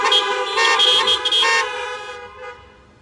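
car horns honking

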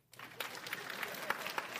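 audience clapping

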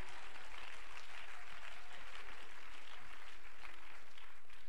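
audience clapping hands

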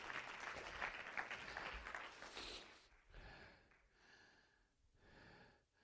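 audience clapping hands

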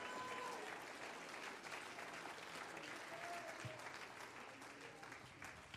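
audience clapping hands

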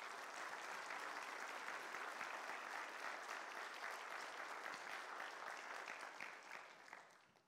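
church audience applause

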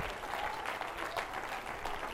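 audience clapping hands

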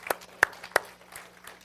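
audience applause

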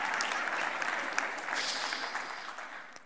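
audience applause

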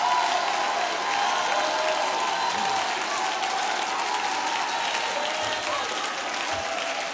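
audience clapping and shouting

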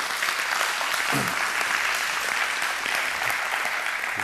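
audience praise clapping

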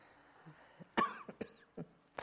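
audience member coughing

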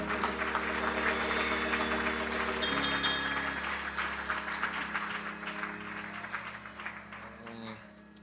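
audience clapping hands

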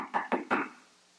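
knocking on a door

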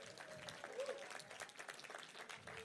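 audience applause

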